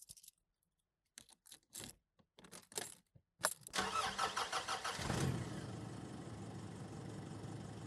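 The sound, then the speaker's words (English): Keys jingle in a few short clinks, then a car engine cranks with a rapid grinding stutter, catches, and settles into a steady low idle, fairly loud. “A moment passes and the ignition starts.”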